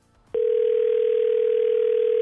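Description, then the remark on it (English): After a short pause, a loud, steady telephone tone cuts in and holds unbroken over a faint hiss of phone-line noise, as a call is placed. “And then we are going to call her with you listening on the phone.”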